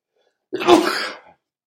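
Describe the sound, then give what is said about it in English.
A single loud sneeze bursts out suddenly and trails off over under a second, with no one talking. “Bless you.”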